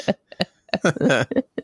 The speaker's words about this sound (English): Oh, are you coughing? Are you dying? Yeah, he started coughing. That's why it like went up really loud.